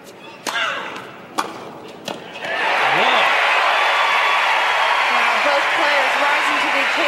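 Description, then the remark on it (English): At a tennis match, a few sharp racket thwacks ring out, then a large crowd bursts into loud, sustained cheering and applause after a player wins a point, with scattered shouts rising above the roar until the end. “The crowd exploded into cheers after Serena's opponent, Lindsay Davenport, won a point”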